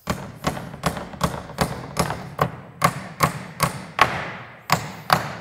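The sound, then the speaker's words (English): A framing hammer pounds big nails with about a dozen loud, sharp strikes in a steady, quick rhythm, with one brief pause before the last few blows. No one speaks. “nails get hammered by hammers, and big nails get hammered by framing hammers.”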